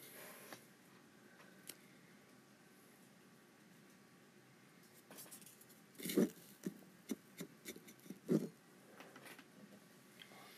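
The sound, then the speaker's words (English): Soft, steady rain pattering outside, a faint hiss with scattered irregular taps and drips that grow a little busier and louder partway through. No voices are heard. “It's raining, right? Sounds like it.”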